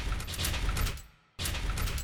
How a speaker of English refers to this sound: After a few minutes of frantic banging on the refrigerator door,